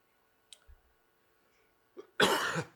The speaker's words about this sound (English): Strong start here. Let me get my cough done away with.